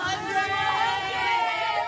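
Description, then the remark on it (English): A steady roar of many voices fills an echoing school hallway at Parkland Middle School in El Paso, Texas, as students and teachers lining it chatter and cheer for their classmates going by at a rally, at fairly high volume without a break. “Students and teachers line a long hallway, cheering as their classmates go by.”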